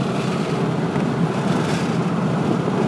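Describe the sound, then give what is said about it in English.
A steady, loud roar of wind and road noise fills the inside of a moving car with its windows open, constant and unbroken, with no voices. “Windows open in my car. That is too loud.”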